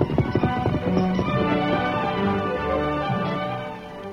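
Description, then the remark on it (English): Horse hooves clip-clop in a steady, quick rhythm, moderately loud, with music playing underneath and no talking, as the Lone Ranger and Tonto leave camp on horseback. “After the Lone Ranger and Tonto left camp, Dan mounted his horse Victor and rode the trail that led to the Stacy Mine.”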